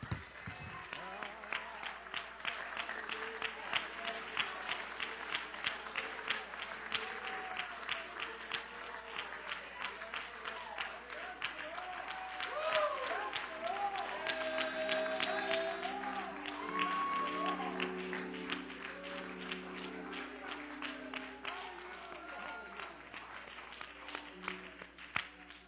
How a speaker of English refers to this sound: Clap your hands to the Lord and give him a little shout of praise together with me.